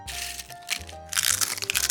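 Loud, crackling crunches of a hard taco shell being eaten out of someone's hand, a dense burst of brittle snapping that grows harsher and more rapid in the second half, with no talking.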